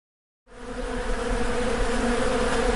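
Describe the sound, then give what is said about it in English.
A dense swarm of angry bees buzzes loudly and continuously, starting abruptly after a brief silence and holding a steady, droning hum with layered wingbeat tones. “Pouring from the mouth of the newly formed monster is a swarm of angry bees.”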